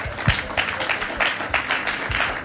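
A crowd claps steadily, many hands overlapping into a dense, continuous patter of applause at a moderate, even loudness, with no voices over it.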